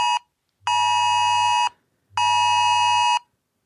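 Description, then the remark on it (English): A harsh emergency alert tone on a smartwatch sounds in two long, loud, buzzing blasts of about a second each, separated by a short gap, with no voices present; a COVID-19 emergency alert issued on 25 March 2020, received twice. “Oh my God, that's the sound. I guess I got it twice.”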